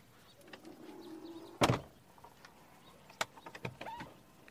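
A motorized car door, opened by pressing its flush, recessed handle, whirs with a low mechanical hum as it swings open, then releases with a solid thunk, followed by a few lighter clicks and latch sounds, with no talking.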